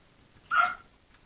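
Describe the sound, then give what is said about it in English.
A single short, sharp dog bark, standing alone against a quiet background with no talking around it. “Right on cue, the dog barks.”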